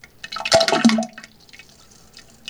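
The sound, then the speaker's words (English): A brief rush of splashing waterfall water surges up, punctuated by a couple of hollow drips and plops, then fades to a faint trickle; a waterfall-and-drips sound effect. No voices. “This one says waterfall and drips.”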